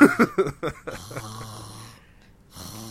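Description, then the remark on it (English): Heavy, raspy breathing from a monkey, a series of quick rough snorting pulses that slows into a drawn-out wheezy breath, pauses briefly, then starts again. “And then it starts breathing and he's like, never mind.”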